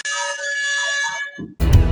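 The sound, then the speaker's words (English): A loud, blaring air horn blast holds one steady, buzzy pitch for just over a second, then cuts off. A short burst of a different, noisier sound follows. “And I'm going to give you an air horn.”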